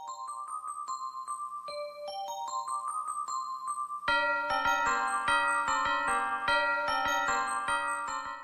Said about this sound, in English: We hear the familiar opening notes of Carol of the Bells.